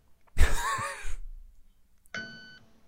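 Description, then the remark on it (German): A breathy, rushing burst with a wavering tone fades out. After a short pause comes a single short electronic beep: steady, buzzy and rich in overtones, cut off abruptly. “Das ist nur gepiept, oder?”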